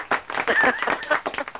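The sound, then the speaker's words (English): A short burst of applause sound effect after a correct trivia answer, a crowd of hands clapping in a dense, irregular patter at moderate loudness, lasting under two seconds. “Let's give you some applause.”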